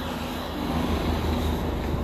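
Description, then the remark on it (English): Steady traffic noise on an industrial estate road during a lunchtime walk: a continuous low engine rumble with a droning hum, holding at a fairly even loudness for the whole two seconds, with no voices. “Obviously this is my lunchtime walk, so excuse all the traffic noises, like that.”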